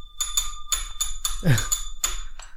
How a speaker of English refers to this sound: So should I do it? Should I ring the spoiler bell? Yes, you can ring the spoiler bell. Go on.